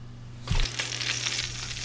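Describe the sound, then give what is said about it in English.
Bacon sizzling in a skillet as it cooks, a soft thump as it lands, then a steady, crackling hiss with scattered pops, fairly loud, with no voices. “Sounds like it's sizzle time. Can't forget about our bacon.”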